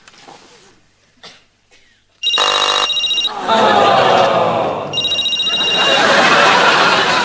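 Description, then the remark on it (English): After a couple of seconds of faint murmuring, a telephone starts ringing loudly as a call is placed to Father Larry Duff, its shrill bell repeating in insistent bursts through to the end. “And we get a phone call to Larry Duff.”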